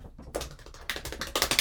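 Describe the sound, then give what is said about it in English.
A quick flurry of fingers tapping on a tabletop like an improvised drum roll, fast irregular raps building slightly louder toward the end, with no talking. “Can I get a drum roll?”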